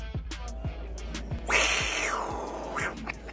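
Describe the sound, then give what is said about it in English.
The athletic director of BYU imitates a cougar growl in the press box suites: one harsh, raspy snarl lasting nearly a second, then a shorter rasping burst, over a steady low rumble with faint scattered clicks. “In the press box, or the suites, …, the athletic director of BYU, of course, did a cougar growl. Listen to this.”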